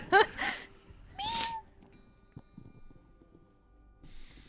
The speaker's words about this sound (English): There's a cat outside.